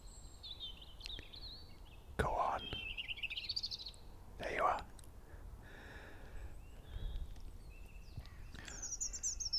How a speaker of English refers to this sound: But the robin doesn't sing the same tune. It sort of warbles as it is now. In fact, there it is, just next to me. Maybe 15 feet away.